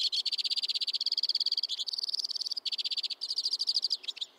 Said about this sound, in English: So even in the grips of winter, when most songbirds are months away from the breeding season, somewhere among the snowy conifers, crossbills are already warming up.